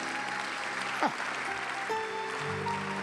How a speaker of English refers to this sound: Come on, give God a clap offering.